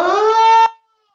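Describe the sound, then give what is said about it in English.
A person imitates a sasquatch howl late at night on a farm: one sustained, rich-toned vocal cry that holds a steady mid pitch for over half a second, rises slightly, then cuts off abruptly into silence. “So go find a nice squatch and stick and practice your howls.”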